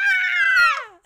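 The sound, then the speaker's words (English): A giant snake's scream from the movie Anaconda: a single loud, shrill, harmonic shriek held for about a second, its pitch sliding downward at the end, with no one talking. “No, they scream, apparently.”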